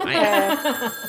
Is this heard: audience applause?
no